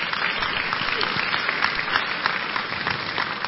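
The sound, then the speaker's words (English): An audience claps hands during a sermon in a dense, steady burst of applause lasting several seconds, many overlapping claps at an even loudness with no voices standing out. “Clap your hands.”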